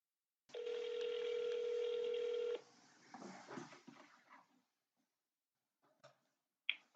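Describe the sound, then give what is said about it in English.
A steady electronic phone tone holds for about two seconds, then gives way to faint line noise and a few sharp clicks, like a call being placed and connecting over a handset, as a call is placed to a contest winner. “I'm about to call up the winner, and I hope she answers her phone.”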